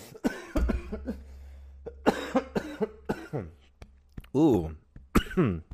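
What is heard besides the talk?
cough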